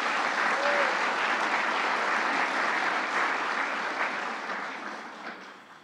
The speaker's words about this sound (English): So if we could give them all a quick applause, that would be great.